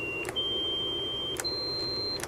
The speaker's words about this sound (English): Now, what happens if we increase the frequency of this tone here? Let's go on up a little bit.